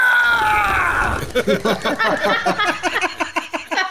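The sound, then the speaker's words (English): A person lets out a loud, high-pitched scream of fright, sliding downward for about a second, then breaks into rapid, choppy vocal bursts like panicked gasps; the scream comes on waking to see a creepy doll with crooked wooden eyes. “And as soon as you scream, Oifinyin appears from behind some trees, and she has like a, you know, panicked look on her face.”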